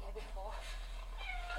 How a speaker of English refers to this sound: Oh, it's a cat.